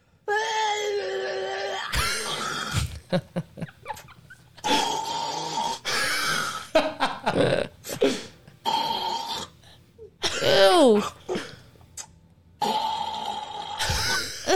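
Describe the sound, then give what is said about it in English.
A man coughs and gags over and over after taking a shot of alcohol and swallowing weed, harsh raspy bursts mixed with strained, groaning retches and brief pauses between fits, loud throughout with no talking. “He's going to cough.”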